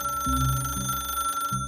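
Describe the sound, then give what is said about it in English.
A telephone rings unanswered with a steady, buzzing electronic tone that pulses as if repeating, fairly loud, cutting off abruptly near the end. No one speaks. “The mother listened to the phone ring, and ring, and ring.”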